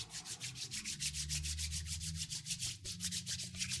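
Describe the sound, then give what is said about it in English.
Hands rubbing together with sanitizer, a brisk, steady back-and-forth swishing of about five strokes per second, bright and dry, over a low droning hum with no talking. “No, I've got to take my hand sanitizer break.”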